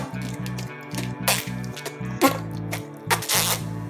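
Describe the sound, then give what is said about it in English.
A voice imitates a lobster fart with a rapid, stuttering series of low buzzy raspberries, broken by a few breathy hissing bursts, fairly loud. “And I think a lobster too is like this.”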